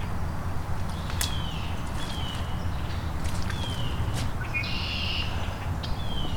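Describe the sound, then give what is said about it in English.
A yellow-rumped (myrtle) warbler's song: a few short, high, thin trilled phrases scattered over a steady low outdoor rumble. “Yes, I'm pretty sure that's myrtle warbler or yellow-rumped warbler.”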